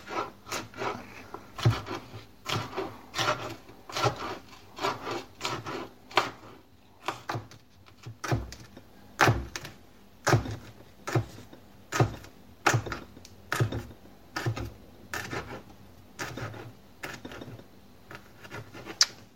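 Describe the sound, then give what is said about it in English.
A knife chops chilies into little strips on a cutting board: a steady run of sharp, woody taps, sometimes quick, sometimes spaced out, with brief pauses between bursts and no talking. “And now I'm just going to chop this into little chili strips and throw it in with my onion and garlic, ready to fry at that point.”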